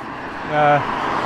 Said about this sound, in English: I'm now walking up the road back to my house. That's why you can hear cars, sorry.